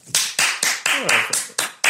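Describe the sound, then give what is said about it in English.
One person claps about seven times in a steady, loud rhythm, imitating a cinema audience clapping at the end of a film, with a faint vocal murmur partway through. “And the mad thing is they all clap at the end.”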